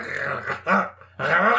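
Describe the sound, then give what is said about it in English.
Rough dog growling comes in three snarling bursts, the last one longest, with brief pauses between them and no other sounds. “Down, boy. Ow!”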